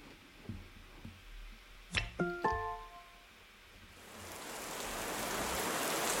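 A short chiming Sleepjar ident plays, then steady rain from the Alexa Rain Sounds skill swells in, a dense hiss of drops hitting a hard surface that grows louder and continues to the end.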